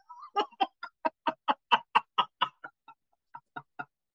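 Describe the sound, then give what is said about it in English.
A person imitates a baby bird chirping with their mouth open as wide as they can: a quick run of about a dozen short, clucking chirps, fairly loud, with a brief pause before the last three. “No, I just have my mouth open and as big as I can. Like a little baby bird.”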